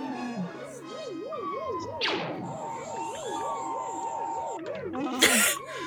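The Tentive 4 alarm sound: a steady warbling alarm rises and falls in pitch over and over, with a sharp whooshing sweep partway through and a brief noisy burst near the end.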